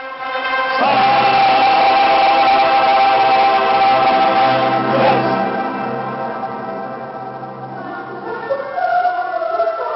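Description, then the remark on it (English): A large choir in Bremen Cathedral, recorded from among the singers at the back during the general rehearsal of Verdi's Requiem, holds long, steady chords that swell in just after the start and stay loud, wrapped in heavy reverberation, then slowly thin out and soften, with a muffled, lo-fi tone. “Did you hear this reverb? Or only the questionable recording quality?”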